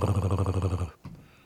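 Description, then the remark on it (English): A person voices a low, rumbling dog-like growl for just under a second, pulsing steadily, then stops abruptly, followed by a brief breathy trailing sound. “I start growling like a dog.”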